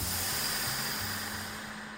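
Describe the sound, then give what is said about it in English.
A steady, loud hiss of steam in a steam room, a continuous spraying rush that fades slightly toward the end, with a low mechanical hum underneath and no voices. “Rick Mahorn, welcome to the steam room.”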